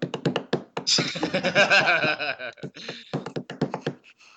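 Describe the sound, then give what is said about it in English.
A man bangs drumsticks on a door: rapid, sharp knocks hammering in quick bursts at the start and again near the end, with a loud sustained voice-like sound ringing through the middle. “Oh, he's now pulled out some drumsticks. What is he going to do? What is he going to do? He bangs on the door.”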